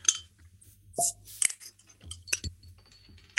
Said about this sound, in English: We should crack these open and cheers one out.